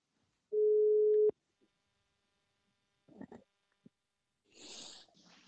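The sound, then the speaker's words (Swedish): A single steady telephone ringback tone sounds for under a second while a phone call is being placed, followed by quiet handling clicks and a short breathy, rustling burst near the end. No one speaks. “Då passar vi på att ringa till henne då.”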